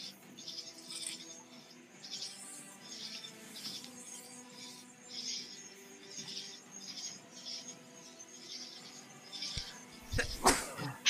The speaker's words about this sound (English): So sorry, guys. Bless you.